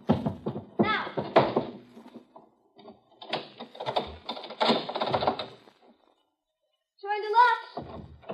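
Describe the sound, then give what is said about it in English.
A heavy chair lying just inside a door is dragged and shoved out of the way across the floor in several clattering bursts of scraping and thumps, pausing briefly before a final high squeal of wood. “Now, you have to move that chair out of the way so he can get at the locks. I'm doing it.”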